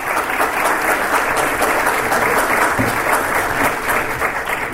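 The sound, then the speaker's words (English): Sustained applause from a large audience welcoming the opening keynote speaker, a dense, steady wash of clapping that stays loud and even for several seconds without any talking over it. “And so welcome him with a warm applause, my good friend Cliff Ravenscraft.”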